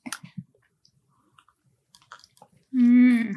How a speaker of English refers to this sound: And cheers. Let's have a little sip of this.